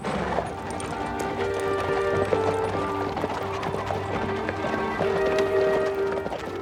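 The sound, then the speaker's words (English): Steady clip-clop of horse hooves pulling Mr. Fairbanks' horse carriage carrying the Haydens on a journey through the South, a continuous rhythmic trot with a low rumble of wheels and faint background tones underneath. No one speaks. “And all along the way, the Haydens hold each other tightly in Mr. Fairbanks' horse carriage.”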